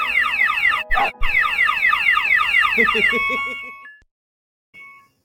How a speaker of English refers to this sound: The alarm was blazing.